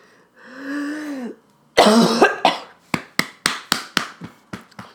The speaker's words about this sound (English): Usually, I have to cut out your coughing because you're smoking so much weed during an episode, but I don't think I'm going to cut it this time.